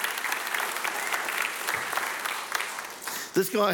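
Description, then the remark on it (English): A church audience claps steadily in praise of God for about three seconds during a sermon, a dense, crackling wash of many hands at moderate loudness, before it fades and a voice starts speaking at the very end. “Come on, give God a clap even for doing that.”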